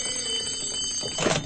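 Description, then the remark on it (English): A telephone bell rings in Denver as a young real estate appraiser is leaving for the airport: a steady, shrill metallic trill that continues unbroken, with a slight surge of noise near the end. Nobody speaks. “Len Doyle, a young Denver real estate appraiser, is just leaving for the airport when the phone rings.”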